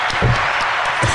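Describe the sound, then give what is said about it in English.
A brief burst of applause for a first 3-pointer made in a basketball game, a dense, steady wash of clapping that fills the short clip at a fairly loud level, with faint low murmurs underneath. “So maybe I'm sure all of you listening are probably applauding. So we'll just give a.”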